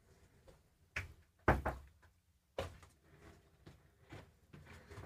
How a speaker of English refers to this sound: Knock on wood. Shit. We don't have wood. Door. The door. Knock on wood.